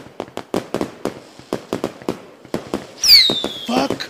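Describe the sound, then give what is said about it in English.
Fireworks sound effect: a quick run of sharp, crackling pops followed by a shrill descending whistle and a final burst, loud, with no talking. “Could someone hit me with some fireworks?”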